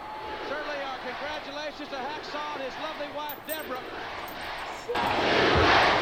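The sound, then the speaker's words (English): A capacity arena crowd chants "USA, USA" in a rhythmic two-beat cheer over and over as Jim Duggan is in the ring waving Old Glory, many voices in unison under a constant roar, then swells into louder, noisier cheering for the final second. “And you can hear this capacity crowd in the background. They've got it. USA, USA.”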